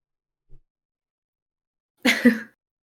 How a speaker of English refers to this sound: Oh goodness, my dog is coughing in my lap. Oh no, I think she's okay. You okay?